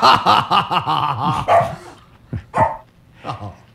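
A dog barks in a rapid, loud run of yips for about a second and a half, then lets out a few separate barks after short pauses.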